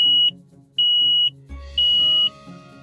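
smoke alarm beeping

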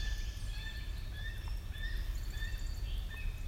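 gull calling

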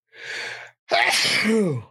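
sneeze

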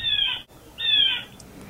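blue jay calling

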